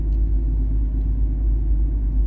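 Steady low rumble inside a moving car, a constant deep road drone with faint engine hum and no voices, filling the cabin evenly from start to finish.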